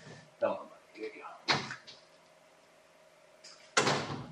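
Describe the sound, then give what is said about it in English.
A back door is opened to let a dog out and later shut, giving two brisk, scraping bursts separated by a quiet pause, with a few soft vocal sounds and a low steady hum underneath. “My dog is like scratching at the back door here to get out.”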